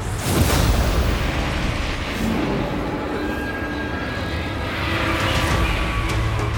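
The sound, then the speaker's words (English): A loud explosion bursts at the start, then a deep, rolling rumble and roar carry on for several seconds before swelling slightly near the end. No voices. “He heard an explosion.”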